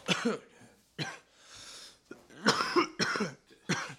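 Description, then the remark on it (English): A person coughs repeatedly: a couple of isolated coughs, then a quick burst of three or four harsh, wet coughs in a row, with a breathy pause between. “Sorry, I'm coughing.”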